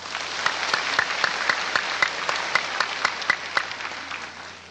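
An audience applauds steadily to encourage a speaker coming on stage to give a report, many hands clapping in a dense, crackling wash with sharper individual claps popping out, holding an even level before easing slightly at the end.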